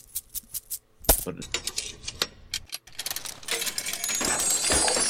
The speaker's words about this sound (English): We found this bag of magic coins, and when we throw one in this gumball machine, well, it gives us a taste of what's to come. Let's go ahead and do that.